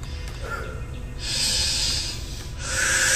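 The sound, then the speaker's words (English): Audible deep breathing during a guided meditation: a long, airy breath drawn in and let out, followed by the start of another, with a soft hissing quality and no talking. “Breathe in and breathe out. Make sure to focus on your breathing.”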